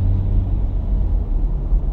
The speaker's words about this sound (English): Y'all, I'm sorry. I am currently stuck in traffic.